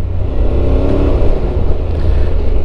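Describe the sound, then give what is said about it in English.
A motorcycle with a dual-clutch (DCT) gearbox drones steadily, its pitch rising and settling as it automatically shifts up and down through the gears, with a rumbling low end and no voices. “it's a bit like a scooter, but it's nothing like a scooter because it still goes up and down the gears without a CVT belt revving its ass off all the time.”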